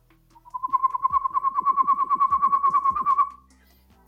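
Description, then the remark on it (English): A person whistles an imitation of an excited pygmy owl: a fast, steady run of about two dozen clipped, even-pitched hoots lasting around three seconds, fairly loud, with no talking. “if you can imitate a pygmy owl, then you can get all the other birds to come out of the trees”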